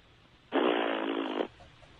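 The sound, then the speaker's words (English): A person imitates a horse with a loud, buzzy fart-like raspberry lasting about a second, a steady rough blare that stops abruptly, with no talking around it. “Like, give me you know, like, a barnyard animal, and I'll approximate what... A horse.”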